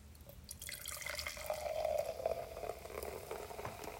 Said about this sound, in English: This one had like a really nice pour. Don't you agree? I just poured it really nice too. Yeah, you're right. You're right. I feel like it was I feel like it was a big enough can that you could pour without worrying that you were like jipping me.